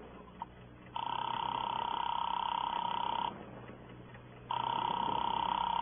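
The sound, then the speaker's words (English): After a faint click, a telephone line rings in the earpiece: two long, steady buzzing ring tones separated by a silent gap, heard through a thin, narrow phone connection with no talking. “Give me that phone.”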